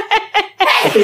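A loud sneeze: two short catching breaths followed by a longer, explosive burst of breathy noise, with no talking during it.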